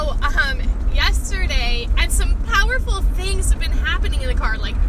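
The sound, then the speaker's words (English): A steady low rumble of road noise from inside a moving car runs throughout, constant, while someone talks over it. “Crossing the road, those busy people trying to do the things that God's calling us to do, going where he's asked us to go, and right now that means going in the car to serve my family.”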